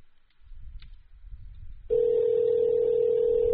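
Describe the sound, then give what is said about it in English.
A steady electronic telephone ring tone as a mobile phone call is called back after the connection was lost, starting abruptly after a second or two of low rumbling handling noise and holding loud and even. “Let's call back.”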